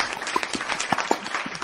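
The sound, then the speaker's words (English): Clapping sound effect: a quick, steady patter of sharp hand claps, like a small group applauding, with a few louder claps standing out, and no one talking. “No, do not put that clap.”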